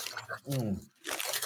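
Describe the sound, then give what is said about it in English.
Crisp crunching of Flamin' Hot Cheetos being chewed by people, in two noisy bursts separated by a short voiced sound and a brief pause. “And what you hear is us eating Flamin' Hot Cheetos, because why not?”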